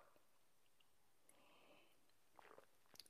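A quiet sip from a drink, taken at the same moment as another person: a soft airy slurp, then a few small wet clicks and a swallow in near-silence, with no one talking.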